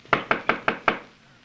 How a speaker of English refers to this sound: The door of the cabin is open, Chico. Mm-hmm. There must be someone here. We will knock before we go in.